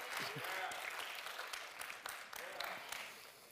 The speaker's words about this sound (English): Y'all ain't got nowhere to go. Y'all just clap like you like it.